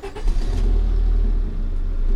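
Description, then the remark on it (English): A trash car's engine starts up and revs, settling into a steady, deep, loud rumble for a couple of seconds as it drives back towards the city of Pathentica, with no voices. “Our heroes load up in the trash car with Johnny as he drives them back towards the city.”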